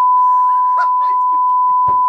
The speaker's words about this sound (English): Is your phone going? Is it? Yeah, there's the first one of the day.